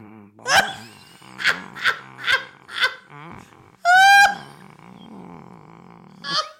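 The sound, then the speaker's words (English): A voice imitates a Siamese cat: five short, strained yowls in quick succession, then a louder, drawn-out wailing meow, and one more brief cry at the end. “And I just was sitting there and I heard myself making this noise. And it was like a Siamese cat.”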